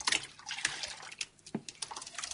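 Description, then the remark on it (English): Water pours and splashes into a thick, wet newspaper pulp in a blender to thin it into a runny paste, with sloshing, gurgling bursts over a couple of seconds and no talking. “Well, we now want to suspend those in water.”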